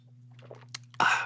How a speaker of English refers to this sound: I'm going to get a sip of some pine needle tea here.